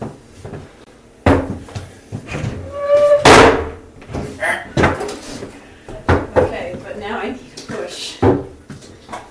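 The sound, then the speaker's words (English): A door is tugged open and held with several sharp knocks and thuds, fairly loud, while people talk over the handling sounds. “You need to either pull or just hold on hold to it hold while it. I pull. Hold the door.”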